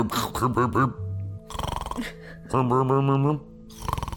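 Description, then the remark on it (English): A person vocally imitates a frog-like snore, producing croaking, rattling bursts in a few loud, rhythmic pulses with breathy inhale sounds between them. “He snores like a frog.”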